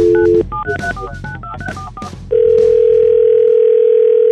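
A telephone dial tone hums briefly, then a rapid run of about a dozen keypad beeps at varying pitches as a call is dialed for The Neighbor Dispute segment on Froggy 92.9, followed by a loud, steady tone that holds to the end.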